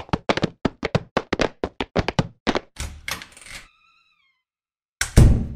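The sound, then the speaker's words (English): Boots stomp rapidly and heavily to knock snow off, about a dozen thuds in quick succession, followed by a scuffing shuffle, a brief high tone, silence, then one loud thump. “Stomp the snow off of your boots.”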